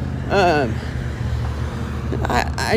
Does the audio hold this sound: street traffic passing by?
yes